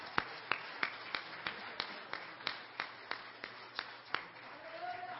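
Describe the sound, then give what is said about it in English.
An audience claps in unison in praise of the Lord, a steady beat of about a dozen sharp, evenly spaced claps, gradually softening, with a faint murmur of voices underneath toward the end. “Come on, let's give the Lord one more hand clap.”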